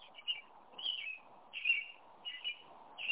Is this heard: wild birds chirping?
yes